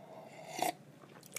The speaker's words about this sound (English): Speaking of which, I need another sip of this tea.